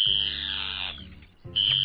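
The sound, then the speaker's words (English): An Arctic tern (Sterna paradisaea) gives a harsh, grating, high-pitched call lasting nearly a second, then a brief pause before a second loud, raspy call begins. No voices are heard. “It's the migration champion of the world, Sterna paradisea, the Arctic tern.”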